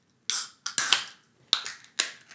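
A beer can cracks open with a sharp hiss, followed by a series of bright, fizzy bursts and splashing as the beer is poured hard into a glass, spilling over, tapering off, with no one talking.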